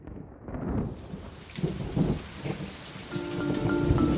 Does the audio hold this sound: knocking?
no